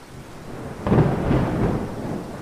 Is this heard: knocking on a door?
no